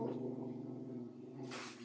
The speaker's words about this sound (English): Whoa. The wild dog appears!